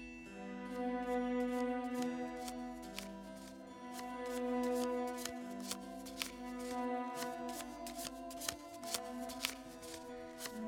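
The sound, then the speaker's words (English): A deck of fortune-telling cards being shuffled for a fortune reading, a run of crisp riffling snaps and flutters with irregular clicks, set against a steady low musical drone underneath. “Now, as you shuffle the deck, feel your energy flow into the cards.”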